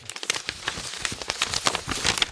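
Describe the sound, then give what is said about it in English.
Paper notes rustle and crinkle as they are taken out and shuffled, a dense run of irregular crisp crackles and soft scrapes, with no voices. “Having paper notes is different and fun.”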